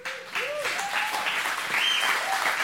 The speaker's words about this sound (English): I really think if that was your cancer gone, you'd be clapping louder. Let's try it one more time. I'm telling you, I'm putting you in remedial clap class.